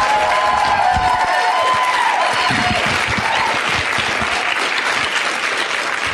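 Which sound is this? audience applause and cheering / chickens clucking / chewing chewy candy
audience applause and cheering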